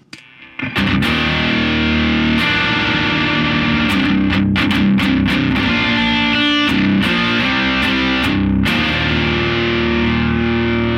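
An electric guitar played through a stacked Noble Screamer overdrive pedal, with drive fully up, both switches up, and tone and level at 4 o'clock, gives a Marshall-style tone. It plays loud, sustained chords and riffs with a thick, saturated crunch, steady and dense throughout, punctuated by brief sharp attacks between strums.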